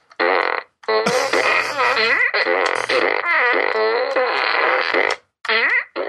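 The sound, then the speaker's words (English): A toy fart gun blasts a rapid series of loud, wet, rasping fart noises with varying pitch, continuous for several seconds with brief pauses, prominent. “It's the fart gun from Despicable Me.”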